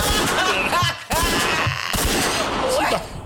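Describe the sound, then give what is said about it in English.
Loud gunshot sound effects fire in quick succession, about three sharp blasts roughly a second apart, each trailing into a noisy rumble, with wavering voices mixed underneath. “Let me get another gunshot.”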